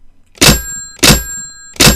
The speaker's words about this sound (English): In fact, slam that phone a few times. Yeah.